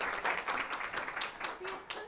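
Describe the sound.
A crowd applauds steadily for a couple of seconds, many hands clapping in a dense, continuous patter at moderate volume, with some murmuring voices mixed in.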